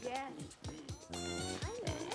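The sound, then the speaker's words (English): A pig named Norman grunts and squeals in a quick series of pitched oinks, some sliding downward, filling the short moment loudly with barely a pause. “Not me, the pig.”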